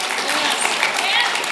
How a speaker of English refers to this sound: It gets a little lonely up here, so clapping is accepted. Maybe I need to just like have like a clap thing just when I need it.